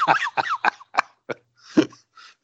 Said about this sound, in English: Bless you.